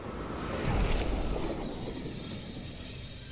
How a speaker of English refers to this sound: Train.